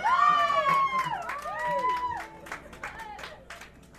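An audience claps in a steady, quick rhythm while loud, wavering voices sing or cheer over the top, the energy easing slightly toward the end, at a live concert recorded on December 17, 1999.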